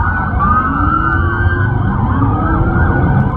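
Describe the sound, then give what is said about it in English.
Sirens from many police cars, about 200, descending on the Bayside mall in Miami, wail at once, their rising and falling tones overlapping loudly and continuously over a low rumble of traffic, with no one speaking. “There looked to be about 200 police cars descending on this Miami mall of Bayside.”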